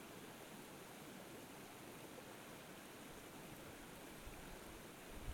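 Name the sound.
flowing water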